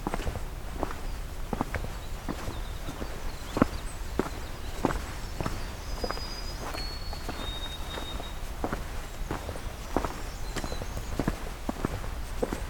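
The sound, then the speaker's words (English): Deer hooves clatter on rocky ground among tamarack and birch trees with no canopy, a steady series of sharp, loud knocks, some doubled, continuing for several seconds. Faint high chickadee whistles sound in the background, with no talking. “That's a lot louder than I'm used to deer sounding in terms of the hoofs.”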